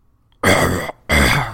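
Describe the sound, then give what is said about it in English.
Two loud, rasping coughs from a man, each a harsh half-second burst with a short pause between, like someone clearing a rough throat. No talking accompanies them. “And he coughs.”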